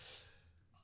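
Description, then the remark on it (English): A single quick sneeze, a breathy, hissing burst that fades out within a fraction of a second, with no one talking. “Bless you.”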